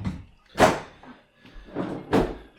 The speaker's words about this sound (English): Don't kick the chair over.